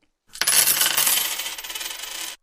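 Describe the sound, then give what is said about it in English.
A loud, bright clatter of coins thrown onto a table, a dense metallic jingling that lasts about two seconds, gradually thinning out before stopping abruptly. “For the first and last time today, let's throw the money on the table.”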